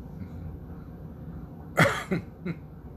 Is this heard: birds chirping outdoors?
no